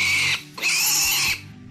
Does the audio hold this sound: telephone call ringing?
no